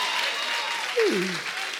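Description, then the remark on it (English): An audience claps steadily for a thumb reported healed during a bishop's prayer, a dense, even patter of many hands at moderate volume, with a short voiced exclamation rising briefly over it midway. “You're not clapping for the thumb.”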